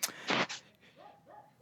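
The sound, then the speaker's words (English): A dog called Crime Dog barks three times in quick, loud, harsh bursts, followed by a few softer, higher whining yelps trailing off. “And now Crime Dog's out here barking anyway, so I'll probably need to go ahead and let you go.”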